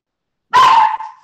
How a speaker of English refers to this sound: the dog just starts barking at him. She's so weird.